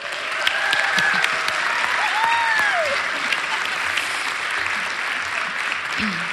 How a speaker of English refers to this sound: Shout, clap, scream, do whatever you want to do. But let's just give God some round of applause.